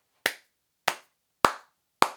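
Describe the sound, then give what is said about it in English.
Four slow, evenly spaced hand claps ring out sharply, each one crisp and distinct, with no voices around them; a slow clap for Damien Leone's film. “The old slow clap to Damien Leone.”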